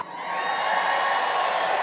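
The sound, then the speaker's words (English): A live audience at a Schmanners show cheers and whoops after a host says they are 39, a sustained, steady burst of crowd noise, fairly loud and even throughout, with no clear single voice standing out. “I don't know why you cheered for that age, but thank you.”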